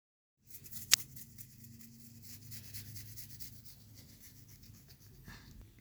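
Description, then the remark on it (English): Paper being torn into small pieces, a steady rasping, rustling tear made to imitate the sound of someone scratching their arms and legs, with one sharp snap near the start and no voices. “I can make the sound by tearing paper into small pieces.”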